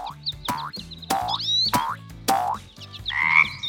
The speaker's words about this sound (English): A frog hopping around.